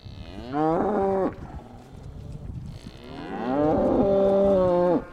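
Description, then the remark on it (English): Black Angus cattle grazing on green pastures at the Van Vleck Ranch in Rancho Murrieta, just outside Sacramento, moo twice, a short low call followed by a longer, louder drawn-out moo, with quiet outdoor ambience between them and no talking. “Black Angus cattle are grazing on 5,000 acres of vast green pastures in Rancho Murrieta.”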